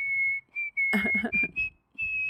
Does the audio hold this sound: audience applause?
no